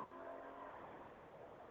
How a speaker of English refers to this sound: Sorry about that. Somebody was hot rodding by here. I heard a little bit of it.